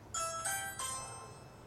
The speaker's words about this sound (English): I notice that Hanu has a ring, one of those doorbells with the built-in camera that you can access from anywhere. So I turn to that next.